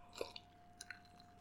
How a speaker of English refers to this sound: I just swallowed an ice cube. My luck continues.